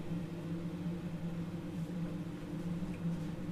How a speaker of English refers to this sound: Kettle's still boiling.